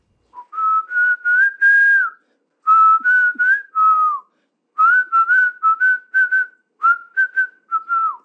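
A person whistles a tune, a clear steady pitch moving through short connected phrases with brief pauses between them, close and fairly loud, with no talking.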